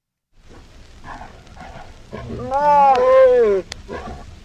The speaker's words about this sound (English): The title of this this file is tiger copulation. Oh no.